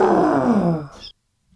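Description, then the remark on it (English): A person imitates an elephant with a single drawn-out, groaning trumpet that slides downward in pitch, ending in a brief higher squeal before cutting to silence. “Now, I say that sounds like a very sick elephant.”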